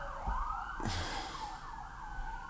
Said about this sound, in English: I hate getting annoyed by sirens, because chances are they're going somewhere to help somebody, but right now I get kind of annoyed by sirens.